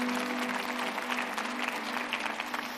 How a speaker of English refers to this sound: You can clap if you want.